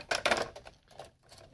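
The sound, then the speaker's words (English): A newly installed phone goes off with a rattling, buzzy burst, a strong rasp at first followed by a few weaker pulses, with no voices. “Is that a fucking phone?”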